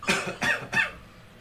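Three short, raspy coughs in quick succession, evenly spaced, with nothing else audible in between and no talking.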